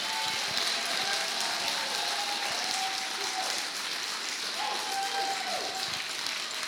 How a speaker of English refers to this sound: So a round of applause